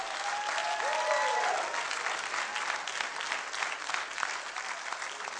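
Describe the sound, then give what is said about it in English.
A crowd, answering a preacher's call to clap their hands and shout, bursts into sustained, dense applause with scattered shouts and cheers rising over it, the clapping holding steady and loud throughout before easing slightly. “Somebody clap your hands and shout like God.”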